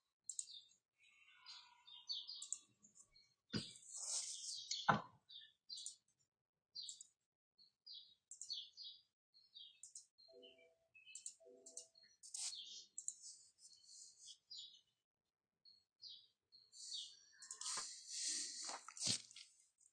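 Birds chirp and tweet in short, scattered bursts throughout, fairly quiet, with a few soft clicks and brief low murmurs mixed in.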